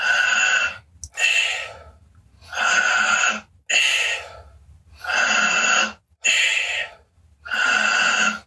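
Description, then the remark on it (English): Loud mouth breathing in a steady rhythm during a guided breathing exercise: six deep, airy inhales and exhales, each lasting under a second with brief pauses between, no talking. “Do it through the mouth, keep on breathing, do it through the mouth, because then it's easier to get a lot of oxygen, energy in a short time inside, and then letting go.”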